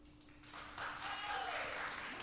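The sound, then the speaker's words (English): A live audience claps to vote on a quiz answer, the clapping swelling quickly and holding as a dense, steady patter of many hands, fairly loud and continuous, with a faint murmur of voices mixed in. “okay, clap if you think it's the book.”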